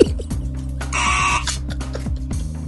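A contestant buzzes in during a Star Wars trivia quiz: a quiz buzzer sounds once, a bright, steady electronic tone lasting about half a second, over a low, droning background music bed with no voices.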